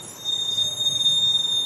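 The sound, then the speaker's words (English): A school bus in the Carr Square neighborhood of St. Louis, early in the morning, lets out a steady, high-pitched brake squeal that holds for over a second over a low rumbling engine and road noise, with no one speaking. “To show how, let's first catch the school bus.”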